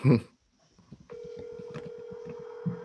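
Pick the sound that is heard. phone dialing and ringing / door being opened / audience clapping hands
phone dialing and ringing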